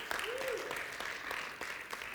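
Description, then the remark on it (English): An audience applauds in a steady, dense patter of many hands clapping at once, with a brief rising cheer or whoop near the start, at moderate volume. “I'm glad you're clapping because you don't know what I'm going to say next.”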